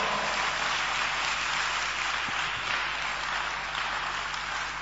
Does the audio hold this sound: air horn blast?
no